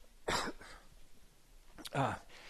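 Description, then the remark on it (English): Two sharp coughs into a microphone about a second and a half apart, each with a softer rasp trailing after it, loud against quiet with no talking. The person coughing has a dry throat. “My throat is so dry, and I do not want to cough into this microphone. But I'm going to cough into this microphone.”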